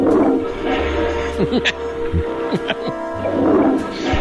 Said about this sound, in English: And that sounds like one of those 5,000 gallons of water per minute flush.